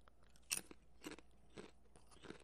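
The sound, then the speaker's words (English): Crisp crunching of sesame oil and salt flavored potato chips being chewed, with several sharp bursts spaced about half a second apart and quieter chewing between them, no talking. “He's chewing with a quizzical look on his face, which I find interesting.”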